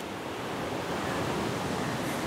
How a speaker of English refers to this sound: It's a little seawater pool on the north end of Maroubra Beach. There's just rock formations everywhere, waves throwing themselves over them and gushing down